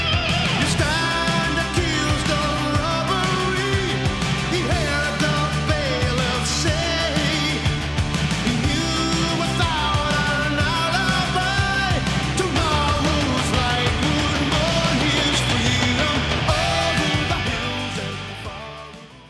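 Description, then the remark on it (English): A loud, dense rock song plays continuously during its second verse, with keyboards added over heavy guitar chords, bass and drums, holding a steady level before easing off slightly at the very end. “Some keyboards are added here.”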